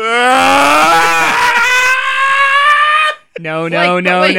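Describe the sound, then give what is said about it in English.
A person imitates the shocked scream of a parent standing in a doorway: one loud, sustained shriek lasting about three seconds with a slightly falling pitch, then a brief silence and a shorter, lower vocal outburst. “Oh, I would probably like, just stand in the doorway and scream.”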